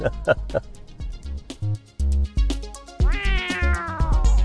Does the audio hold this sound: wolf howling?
no